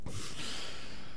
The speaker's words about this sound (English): This is a heavy breather.